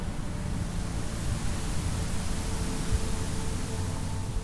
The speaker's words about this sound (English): White noise.